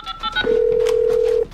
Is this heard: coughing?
no